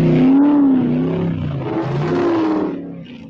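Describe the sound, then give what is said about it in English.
A big 1970s car engine roars loudly, its deep growl rising and falling in pitch as it revs for a few seconds, with no voices. “It's a big car.”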